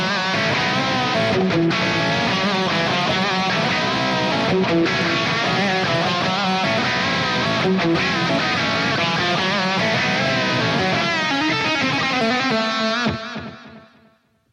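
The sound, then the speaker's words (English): A loud, heavily distorted electric guitar solo, recorded dry with reverb and delay added afterward, plays continuously with no talking, its echoing tail ringing out and fading at the end. “Nice little wetness there with the reverb and delay.”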